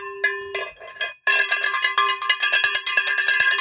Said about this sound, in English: Actually, it's my beer bell. Does it work? It says ring for beer. Does it? Let me try it. Give it a little ring.